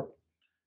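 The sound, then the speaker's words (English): A single dull knock on a wooden surface, fairly quiet, with a short decay and then near silence. “But I mean, I think it'll happen in my lifetime, knock on wood.”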